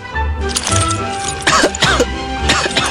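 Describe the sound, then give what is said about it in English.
Several harsh, raspy coughs burst out, spaced about half a second apart, over a steady low background hum with no talking. “We settle for wearing drab clothing and dying at age 29 from a cough.”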